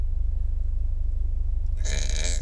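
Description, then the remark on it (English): A loud, throaty burp erupts near the end, following a steady low rumble of background noise, with no talking. “Oh, compliments to the chef, because those burps were strong.”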